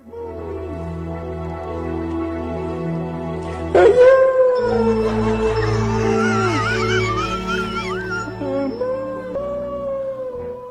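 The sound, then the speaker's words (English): A singer performing before judges lets out a long, wavering howl resembling a bluetick hound, pitch sliding and quivering over steady musical accompaniment, loud and sustained for roughly eleven seconds with a sharp rise partway through. “I'm telling you, it sounds like a blue tick, a dog.”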